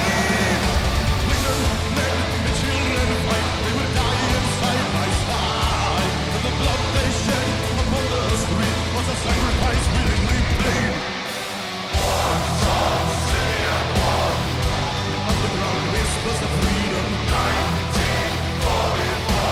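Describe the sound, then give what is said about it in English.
A loud, dense rock song with powerful singing over driving guitars and drums, running at steady full volume apart from a brief drop-out about halfway through. “He also opens up vocally a little bit more in this song.”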